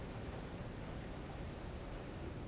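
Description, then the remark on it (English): A steady, unbroken roar of rushing water flooding a canyon fills the whole moment, dense and heavy in the low end, with no voices. “It sounds like water. I think the canyon's flooding.”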